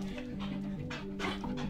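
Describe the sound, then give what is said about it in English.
A dog pants rhythmically in quick breathy bursts, with a steady high whimpering tone running beneath the breaths, during a short experiment at Yale's Canine Cognition Center. “My students and I bring dogs from the community into the center for short experiments and study how canines make sense of the world.”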